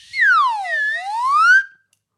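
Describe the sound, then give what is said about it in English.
A slide whistle, played as a send-off, swoops down in pitch and then glides back up in one continuous breathy tone, loud, lasting about a second and a half with nothing else around it. “So I'm just going to play my little slide whistle here.”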